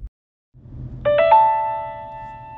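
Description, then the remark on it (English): A voicemail ding tone at the end of a phone's voicemail greeting, signalling the caller to leave a message: three quick bright chime notes step upward and merge into one sustained, ringing tone that slowly fades, over a low rumbling background hum with no talking. “Leave a message after the ding.”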